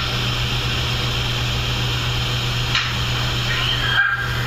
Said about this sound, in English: Oh, that thing at the end. That thing, I remember that now. Were we outside at this time? We were outside at the time. It almost sounds like a dog or something, but there were no dogs there.